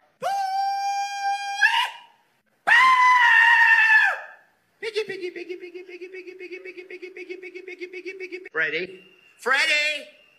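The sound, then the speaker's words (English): A compilation of people hog calling to call in pigs: a series of loud, drawn-out hollered calls from different voices, some steady and piercing, one long warbling cry, each separated by short pauses, forceful. “I don't like this because this is how pig hunters, I guess, try to call in their pigs to hunt them.”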